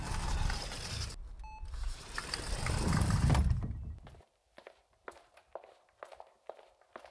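Hurried footsteps moving fast through hospital halls and out the door to the street: a steady, quick run of sharp steps follows a stretch of dense, rumbling hallway noise broken by a brief electronic beep.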